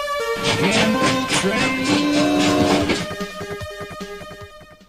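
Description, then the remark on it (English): A loud train sound effect for the 'gamble train' segment: steady rhythmic chugging beneath a blaring, chord-like whistle that holds for a few seconds, then thins out and fades toward the end. No one speaks. “The gamble train is coming down the pike, Boat.”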